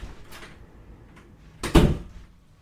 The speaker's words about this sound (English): All right, sorry. I had to get the door. There was a guy from Pizza Hut.